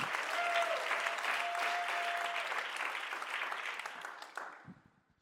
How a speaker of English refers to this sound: Clap your hands to the Lord if you believe that.